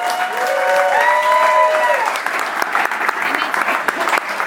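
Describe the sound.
An audience breaks into a steady round of applause, dense clapping that runs the whole time, with a few high cheering voices riding over it during the first couple of seconds.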